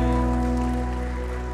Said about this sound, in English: Can we put our hands together and give God a cheer this morning? Amen. Isn't he good?